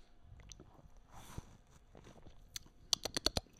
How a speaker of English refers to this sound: And here is a sip of beer.